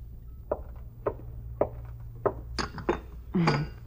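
Cups and dishes clink together as cups are readied for coffee from a brass urn, in a series of about seven sharp, irregularly spaced knocks and chinks, the last few busier and brighter, over a steady low hum with no talking.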